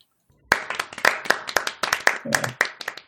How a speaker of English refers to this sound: We always have to give her an applause and a shout out for our matron goddess. And she is quite a goddess.